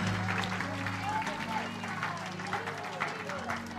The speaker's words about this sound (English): Give him a hand clap and shout of praise. Hallelujah.